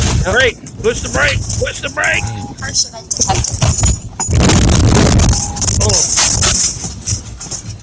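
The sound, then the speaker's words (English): Tires of a vehicle drifting over roll onto highway rumble strips, producing a loud, coarse rumbling roar for about a second amid road noise, with people talking before and after. “He's starting to drift over. There's the rumbles.”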